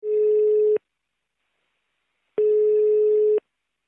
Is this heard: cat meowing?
no